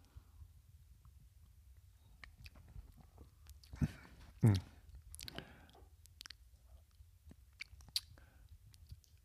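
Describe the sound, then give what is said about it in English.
A quiet sip of mezcal: two short wet slurps in the middle, followed by faint lip smacks and tongue clicks over a low steady background hum, with no talking. “It's only the first sip, but you can tell.”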